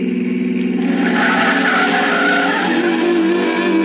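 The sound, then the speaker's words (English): An old pre-war car's engine strains loudly and steadily, its pitch climbing near the end as it labors through a turn, with a faint tire scrub underneath. “It's an old car, pre-war. It sounded like it was splitting at the seams.”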